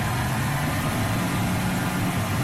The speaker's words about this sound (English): You might hear that sound a couple of mornings a week. It's the truck picking up trash that's put out by the curb.